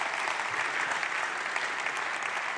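A crowd claps in sustained applause, a dense, even wash of many hands beating at once with no pauses, steady in loudness throughout and no voices standing out.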